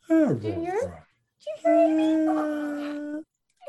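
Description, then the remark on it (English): A female dog named Lucy yawns out loud: a whiny squeal sliding downward in pitch, then after a brief pause a long, steady, moaning tone that holds for over a second before cutting off. “Oh, there she goes. She's yawning.”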